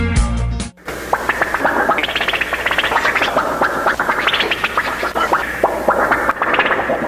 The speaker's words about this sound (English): In case you're wondering what that sound effect is, if you remember the movie with Fred McMurray, well, those of you that were maybe my age, born in the 50s, that was the sound effects from the Model T that Fred McMurray was driving